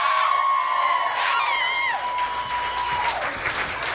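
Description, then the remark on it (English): An audience at a live event claps steadily and loudly throughout, with cheering mixed in and a long, piercing whistle sliding downward above the dense applause. “Okay, round of applause if you guys drove or flew in for this event.”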